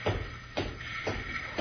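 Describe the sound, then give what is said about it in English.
Four evenly spaced footsteps of an approaching guard, or someone, land about half a second apart at a steady walking pace, each a soft scuffing thud over a faint background hiss, with no voices. “I hear footsteps. There's a guard or something coming.”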